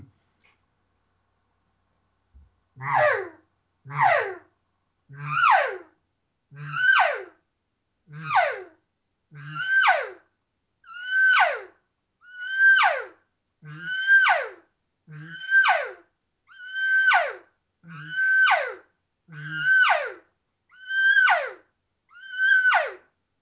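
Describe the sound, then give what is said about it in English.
A reed call imitates an elk cow with about fifteen short, high, descending mews, evenly spaced roughly every second and a half. Each call is loud, with nothing else behind it. “by contrast, in how I blow a normal cow call on a mouth reed, or a normal three-dimensional sweet cow call on an open reed, when I use that call, it flies completely in the face of how I blow these other calls.”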